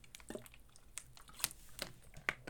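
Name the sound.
person drinking water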